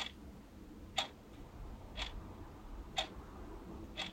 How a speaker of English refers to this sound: So when I stay with him, I have to move the bedroom clock to another room so I can sleep.